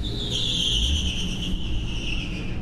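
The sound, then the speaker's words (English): A car engine pulls away from the start line with a steady, high-pitched whine over deep rumbling, loud for a few seconds, its pitch sinking slightly as it moves off. It is the first of two cars. “There are two cars. There goes the first of the two of them.”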